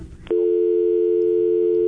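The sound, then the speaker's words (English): A telephone busy signal after a caller is cut off during a radio call-in broadcast from the Fred Hall Show: a brief burst of line noise, then a loud, steady low-pitched tone that holds unbroken to the end, with no voices. “You got cut off.”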